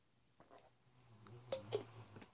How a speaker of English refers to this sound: Okay, note to self also. Stop drinking all of this root beer float milk after this sip.